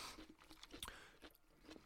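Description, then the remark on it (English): Crunchy bites and chewing of food, a rapid series of crisp cracks and crackles repeating irregularly over two seconds, with no talking. “Now, listeners who are listening and potentially bothered by this, there's a lot of crunch happening.”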